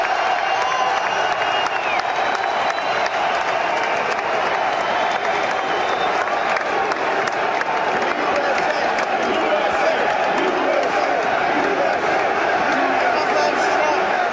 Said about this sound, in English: the UFC fight in Miami that Donald Trump went to. We played some audio from that to start the show, but this was when he entered and walked down to his front row seat and waved to the crowd, and a USA chant broke out.